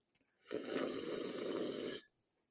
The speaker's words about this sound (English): Just want to say, there was no reason to slurp that fucking loud.